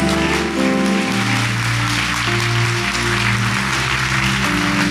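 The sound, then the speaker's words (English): A crowd claps for Jesus steadily as a dense wash of applause, mixed with sustained low musical tones underneath, loud and continuous throughout with no voices. “Oh yeah, that's a good place to clap for Jesus.”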